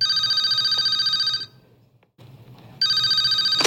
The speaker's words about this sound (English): But then the phone rings.